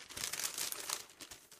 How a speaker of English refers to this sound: Except for the paper I just rattled around.